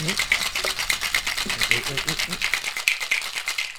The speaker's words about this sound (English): Ya que tienen su hielo adentro, le dan un shake.